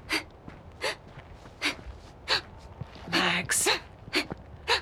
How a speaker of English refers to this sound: I can't hear anything over the breathing.